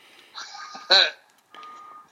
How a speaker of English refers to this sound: Can you mute yourself when you're backing up the truck?